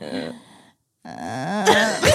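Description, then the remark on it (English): A voice mimics the build-up to a sneeze with drawn-out, wavering vowels: a short strained phrase, a brief pause, then a longer rising one that ends in breathy, sharp bursts. “I'm almost gonna sneeze, but I have just to a vowel.”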